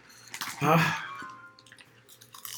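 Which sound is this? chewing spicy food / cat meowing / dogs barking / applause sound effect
chewing spicy food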